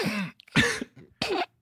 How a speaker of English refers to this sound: Why are you hiding your coughs, man? Yeah. Unless you're in class and you've coughed 40 times already.